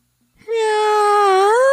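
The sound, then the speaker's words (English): A person imitates a cat's meow with a single loud, drawn-out vocal wail that holds a steady pitch and bends slightly upward at the end, with no other sounds. “gave us this for his kitty cat meow”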